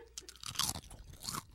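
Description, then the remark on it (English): Crisp crunching of someone biting and chewing a hot pepper chip, with several sharp, bright bursts in quick succession and no talking. “Nothing like the sound of crunching.”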